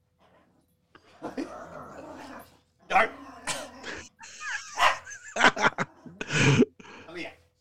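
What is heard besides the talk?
dog barking and whimpering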